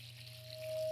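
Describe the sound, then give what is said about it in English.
Water for baptism pours steadily into a basin, a continuous splashing stream with a faint ringing tone that swells louder toward the end of the brief moment. “And we're going to have the waters right here.”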